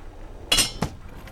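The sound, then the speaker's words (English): Two quick clinks of dishes and silverware in a kitchen, the first with a bright metallic ring and the second a shorter knock, otherwise quiet. “Aye, and here's the silverware over here.”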